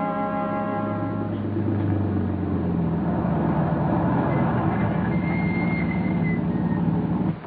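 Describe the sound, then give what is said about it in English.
A car engine drones steadily and fairly loud as the vehicle drives along, its rumble shifting slightly before it cuts off near the end as the car pulls up at a roadhouse. “You can get out of the car.”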